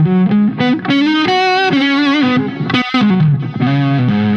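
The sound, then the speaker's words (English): An electric guitar played through a miked amp head on its clean channel, a steady stream of sustained, ringing notes and melodic lines at a loud, even level with no one talking. “I mean, I don't know if you can hear, but this is the clean channel.”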